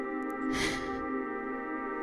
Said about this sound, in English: As you awake in your body, Billy, Bailey, Mickey, and Agent Bucket sit concerned over you as you gasp into life.